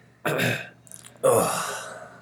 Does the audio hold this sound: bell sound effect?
no